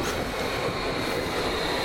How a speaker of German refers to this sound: Behold, U-Bahn. Nein, das ist ein DT4. Erstens, der quietscht nicht und zweitens hätte er auch keine nicht quietschige neue Software.